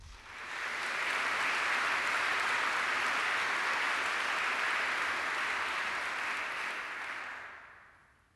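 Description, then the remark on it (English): An audience applauds the Freeman Dancers steadily for about seven seconds, a dense, even wash of many hands clapping that swells in quickly, holds at a strong level, then tapers off at the end. No voices are heard. “Please give a round of applause to the Freeman Dancers.”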